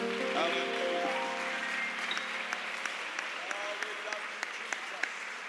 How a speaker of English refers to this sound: Why don't you give the Lord a hand clap of praise again before you're seated tonight.